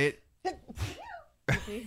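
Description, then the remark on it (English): A single sharp sneeze from a person with allergies bursts out, with a brief voiced tail. Short bits of talking come just before and right after it. “Bless you again.”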